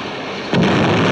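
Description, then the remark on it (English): The crash of the Transcontinental Limited train, 10 minutes out of Metropolis, caused by the Wrecker: a steady rumbling hiss gives way about halfway through to a sudden, loud crashing impact that swells into a sustained, heavy roar of noise. “The morning paper screamed a lurid account of the smash-up, but could shed no light on the Wrecker's identity or how he had caused the crash.”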